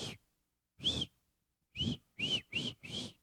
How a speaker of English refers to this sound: But if I whistle, they come. A good pastor whistles, here comes the herd.